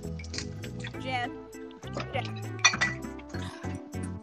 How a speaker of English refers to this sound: That is the worst sounding water I've ever heard.